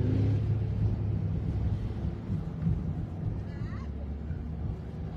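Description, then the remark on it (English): Motorcycle engines rumble loudly and steadily on a street, a deep throbbing drone that swells slightly midway and never fades out. “Motorcycles. They're legal, right?”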